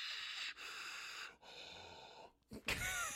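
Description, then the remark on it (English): Loud, close-up heavy breathing blasts straight into a microphone in several long, rasping pulls with brief pauses, then it breaks off abruptly with a clattering burst of noise. “Heavy breathing into microphone, recording cuts.”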